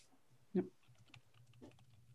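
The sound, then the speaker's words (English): Soft, irregular clicks of typing on a computer keyboard as someone types during a conversation, a handful of quick keystrokes after one louder thump, quiet against a low background hum. “I'm trying to type while I, because all of your great ideas are flowing.”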